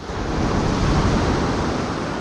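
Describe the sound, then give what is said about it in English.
Steady roar of Pacific Ocean waves breaking on a shore, delivering gravel and pebbles, a dense, continuous wash of noise with no pauses, fairly loud, with no voices present. “The Pacific Ocean.”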